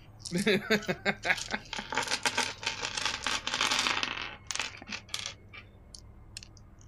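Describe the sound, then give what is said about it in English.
A handful of eight six-sided dice clatter and tumble across a hard surface in a quick burst of sharp, overlapping clicks for about four seconds, then a few scattered taps as they settle. “You're rolling 8 dice. I roll 8 dice. Oh, I need more D6s.”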